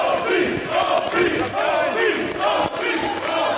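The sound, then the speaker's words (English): A large crowd cheers and roars continuously in a loud, sustained ovation welcoming radio host Opie and his show back to the satellite airwaves after about 30 days away, with many overlapping voices shouting and no pauses throughout. “Well, it was a huge ovation from the crowd welcoming us back to the satellite airwaves where we have been absent for about 30 days.”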